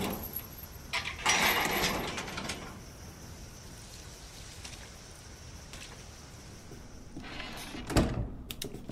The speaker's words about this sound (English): Alright, door just closed on me.